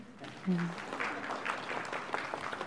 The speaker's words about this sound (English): and she's sleeping, so we'll be very quiet. Congratulations, let's give them a golf clap.